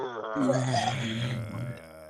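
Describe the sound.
A person imitates a boar with a single drawn-out, gravelly, low-pitched roaring grunt lasting about two seconds, loud and rough, with the voice wavering throughout.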